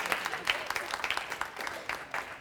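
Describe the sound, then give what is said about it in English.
An audience claps together during a sermon in a steady patter of many overlapping hand claps, fairly loud and continuous for a couple of seconds, with a few murmured voices mixed in underneath. “You can clap to that.”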